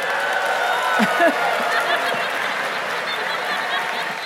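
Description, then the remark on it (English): A live audience cheers and claps in a steady, dense wash of crowd noise, with a few louder whoops rising above the roar before it holds level for several seconds. “Y'all are cheering for malaria?”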